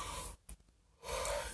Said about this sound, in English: Excuse me, I keep yawning. It's almost 3 o'clock in the morning.